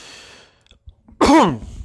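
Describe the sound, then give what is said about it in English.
A single loud, harsh cough bursts out with a raspy, voiced edge, following a soft breathy exhale and a brief quiet pause. No one speaks. “I have no fucking idea why I'm coughing so much.”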